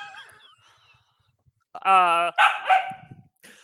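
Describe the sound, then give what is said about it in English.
A therapy dog barks loudly: one drawn-out, tonal bark followed quickly by a rougher second bark, after a faint stretch of quiet voices. “Sorry, that's my therapy dog.”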